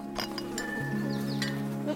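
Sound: goat bleating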